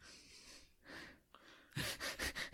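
Heavy breathing up close: a few slow, drawn-out breaths, then a quick run of loud, rhythmic panting gasps in and out. No talking.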